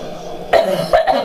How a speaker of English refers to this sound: I choked on water.